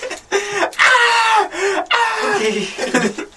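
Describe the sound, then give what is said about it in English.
A person lets out loud, strained cries of pain, three drawn-out anguished wails separated by brief breaks, sounding like someone acting out screaming in agony. “Screaming in agony.”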